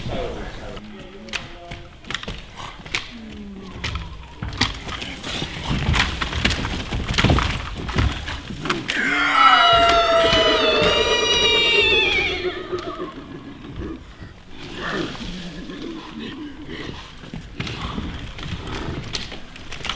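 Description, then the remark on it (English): A staged horse fight run as a warm-up half an hour before a stage show: a loud, shrill horse whinny rises and falls mid-way through a busy, chaotic scuffle of clattering hoof-like knocks, thuds and wooden cracks, with faint voices underneath. “Half an hour before the show, we run the horse fight to keep it more interesting and exciting, and to knacker us out.”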